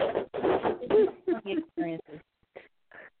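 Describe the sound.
A one-pound gray pet parrot squawks and chatters, a burst of raspy, voice-like calls followed by several shorter, sharper squawks that trail off with brief pauses between them.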